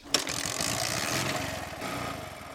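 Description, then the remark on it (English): A small Bajaj Boxer motorcycle engine idles with a steady, chugging putter and a rattly mechanical texture, running continuously without revving and with no one speaking. “This motorcycle is called Bajaj Boxer.”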